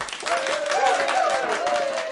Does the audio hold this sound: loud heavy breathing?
no